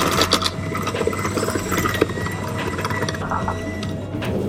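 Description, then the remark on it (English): A stand mixer whirs steadily as it blends dough of creamed ingredients with Breads from Anna flour, potato starch, baking powder, salt and sugar, a continuous motor hum with a gritty, scraping churn running fairly loud, no voices. “All right, once that's all blended together, we're gonna go ahead and cover this and chill for about an hour or overnight in your fridge.”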